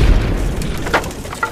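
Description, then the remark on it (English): A steam generator explodes: a loud, deep explosion booms and rumbles, with scattered crackling bursts and hissing spread across the low roar. It stays heavy for over a second, with no voices. “Oh, no. The steam generator!”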